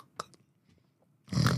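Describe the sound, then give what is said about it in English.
A voice imitates snoring: a short faint grunt, a quiet pause, then one loud, harsh, rasping snort that fills the final moments. “Except I do wake myself up sometimes when I'm snoring, catch myself going.”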